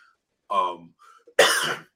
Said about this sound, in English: sorry, I keep coughing.